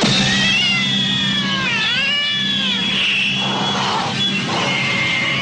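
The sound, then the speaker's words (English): A cat yowls and meows loudly, long wavering cries that rise and bend in pitch, running continuously with a low steady hum underneath and no talking. “Cat! I said scream.”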